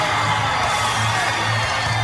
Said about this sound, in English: This capacity crowd, a sellout.